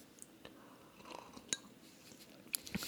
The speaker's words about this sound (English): And it sounds the same, too. God. We take, not only do we sip at the same time, but our sips are equal in volume of liquid.